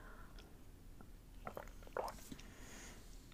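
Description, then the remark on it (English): Quiet sipping of hot throat coat tea on one of the last cold days of spring in Asheville, North Carolina: a few soft, wet slurps and mouth noises cluster near the middle, with a brief louder sip, over faint hiss and no talking. “pardon me, just taking a sip of my throat coat tea here on one of the last cold days of spring, hopefully, here in Asheville, North Carolina.”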